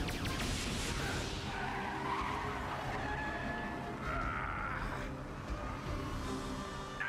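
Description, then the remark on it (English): A car skids during a chase scene, the car that Dash was driving, with loud, sustained tire squeals and a roaring engine, the screeching rising and falling in waves for several seconds, intense. “Yeah, that's the car that Dash was driving.”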